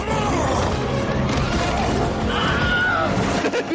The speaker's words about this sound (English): The Wilhelm scream.